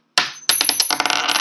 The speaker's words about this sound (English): which is the reason why I literally flipped the coin